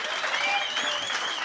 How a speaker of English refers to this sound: What, can we get a round of applause for Kerby and Occy? Man, oh man, what a panel.